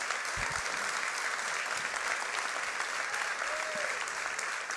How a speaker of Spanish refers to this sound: Uy, qué aplauso tan bueno.